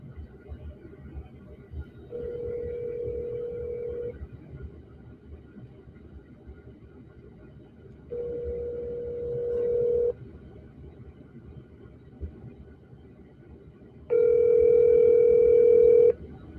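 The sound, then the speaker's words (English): An outgoing call to a cell phone rings out: three steady two-second ringback tones separated by several seconds of quiet, with a low background rumble underneath and no one speaking. “Well, let's give him a call.”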